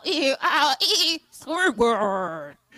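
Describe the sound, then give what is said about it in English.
A goat bleats repeatedly, a quick series of loud, wavering cries with brief gaps between them, the last few calls longer and more drawn out. “We're listening for the GOAT, followed by the GOATs.”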